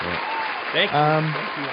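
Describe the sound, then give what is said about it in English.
A dense, steady inserted applause sound effect fills the whole moment, a continuous wash of clapping with a voice calling out over it partway through. “Is this where I insert the thunderous applause?”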